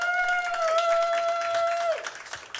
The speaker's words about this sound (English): So audience, I'm going to say each of them, and I want you to applaud for the one that you think would win in a fight.